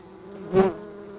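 bee buzzing

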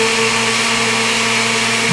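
blender running

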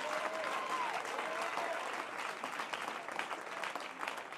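audience clapping hands

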